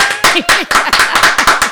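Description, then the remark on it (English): An applause sound effect: a quick run of loud, sharp claps repeating in an irregular rhythm, with some short rising and falling whoops mixed into the clapping. “Where's the applause?”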